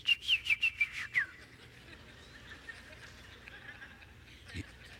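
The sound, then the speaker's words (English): A person whistles an imitation of birdsong like the birds added over televised golf: six quick, bright chirps with falling slides in a rhythmic burst, loud, followed by a few seconds of quiet. “I mean, you know, it's like my husband watches it on TV and it's just like they pop in birds over the speakers to make it sound good, you know, like you hear.”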